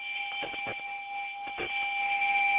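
A bright bell sound effect on a call-in show, played for a first-time caller, rings out and holds steady, a sustained metallic tone with a couple of faint clicks underneath and no one talking.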